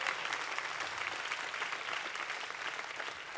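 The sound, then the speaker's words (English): An audience of many people applauds steadily, a dense, continuous patter of many hands clapping at a fairly loud, even level with no voices standing out. “I'm going to make everybody clap for that.”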